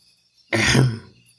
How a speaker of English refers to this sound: The servant opened the door and saw no one there. The frog, standing down low, cleared his throat.